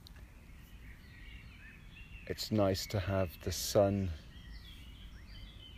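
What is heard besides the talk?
birds chirping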